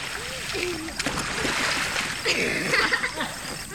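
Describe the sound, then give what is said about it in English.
Water balloons thrown up in the air in summer splash and spatter steadily, with a few sharper bursts. Voices talk and exclaim underneath the fairly loud watery noise. “We're throwing water balloons up in the air.”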